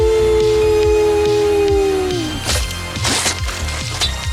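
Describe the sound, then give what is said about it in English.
A werewolf, a man who has just transformed, lets out a long, loud, steady howl that bends downward as it fades, followed by a burst of cracking, splintering wood and heavy thumping impacts. No one speaks. “I'm kidding, he's a werewolf.”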